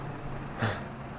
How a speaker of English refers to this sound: Hold up, now there's a bus.